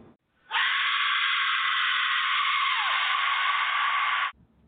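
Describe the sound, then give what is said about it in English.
A single loud, shrill scream held steadily for nearly four seconds, starting and cutting off abruptly, with no talking around it. “There's a lot of screaming going on there.”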